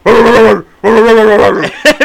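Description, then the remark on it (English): A person mimics a dog with two loud, drawn-out voiced barks or growls, each about half a second, followed by a couple of short sharp yelps at the end. “You'd be like, when the fuck did we get a dog?”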